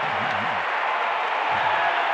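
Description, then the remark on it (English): A large arena crowd at a Utah Jazz basketball game cheers and applauds after a blocked shot forces a shot clock violation, in a steady, loud wash of noise, with a low voice faintly surfacing underneath for a moment. “Crowd loves that.”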